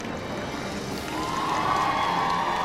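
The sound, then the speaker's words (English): A large crowd cheers continuously at the royal wedding of Prince Harry and Meghan as the couple arrives, a dense roar of many voices that swells louder midway, with higher shouts and whoops rising above the steady wash of noise. “This is what this crowd has slept on the streets for days for.”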